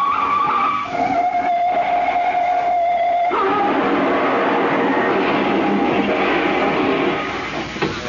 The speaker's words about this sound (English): Did you see that crash? That drunken driver! That car's a total wreck. We have got three head on.